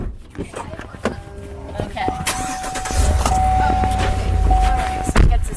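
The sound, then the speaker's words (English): Clicks and handling noises as people load up into a car, then the car engine starts around midway and settles into a steady low rumble, while a sustained electronic chime tone plays over it. “His mom grabs her phone and grabs her car keys and wallet, and then we load up into the car.”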